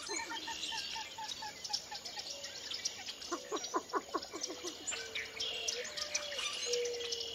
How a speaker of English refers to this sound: Along the water's edge, common moorhen darts in and out of the rushes, and a least bittern calls above a chorus of northern cricket frogs.